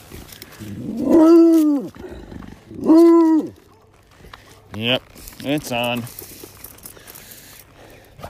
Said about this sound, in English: The gauntlet has been thrown. The dogs must yell now. I know. But you can yell on the way home, all right?